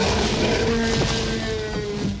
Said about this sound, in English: They had some dolphin screeches. Oh. They actually have koala mating calls. Amazing. Oh my God. I feel like I'm like have a new respect for koalas now. I mean, yeah. And all of these sounds come together to make that iconic roar.